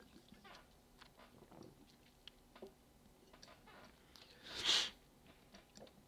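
Quiet mouth clicks and small ticks, then one short, breathy slurp as someone sips a Dr Pepper soda, followed by a few more faint clicks. No one speaks.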